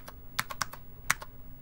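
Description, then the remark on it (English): Typing on the Apple II GS-style keyboard of a portable Apple IIc Plus computer: about seven crisp, clacky keystrokes in an uneven rhythm, clearly audible with no voices. “I mean, this keyboard? Listen to it. This is nerd audio porn.”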